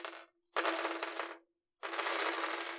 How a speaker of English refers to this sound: So give me 2d6 rolls while I have to sign back in to Google, because apparently I have to do that now. All right, let me just get my dice.